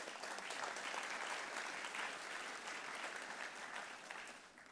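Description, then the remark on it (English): An audience at a Faith Bible Church service applauds steadily for several seconds, a dense, bright wash of many hands clapping at once that holds fairly loud before easing off slightly at the end. “You guys, clap for Taylor, please.”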